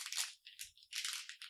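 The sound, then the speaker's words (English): Foil blind box packaging crinkles and tears in loud, bright, scratchy bursts, with a short pause midway before a longer rustling stretch. No one speaks. “It's that magic blind box foil packaging. I love it. So noisy. Where's the little tear tab?”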